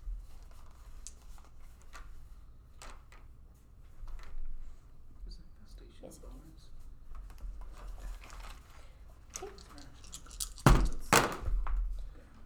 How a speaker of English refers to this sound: You're going to roll extra dice? Yeah, I just got to look at what my shillelagh makes it do. I always roll extra dice. Okay, it turns it into a d8. And then I have my d6 for poison.